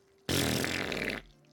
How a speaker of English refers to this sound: You guys need to stop fucking farting while we're trying to film a thing." And then he just kept doing it.